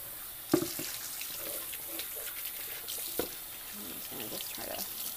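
Water runs steadily from a tap with a continuous hiss, broken by a couple of sharp knocks and some soft splashing movement in the sink.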